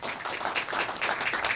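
An audience at a Star Wars talk applauds an audience member who answered a question about a line from the films, a short burst of dense, steady patter of many hands clapping at once, moderately loud, with no voices standing out above it.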